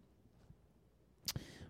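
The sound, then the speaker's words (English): A bell is struck once, a short bright ding that fades quickly with no talking around it. “Listen, people, I have an announcement. Ring that bell”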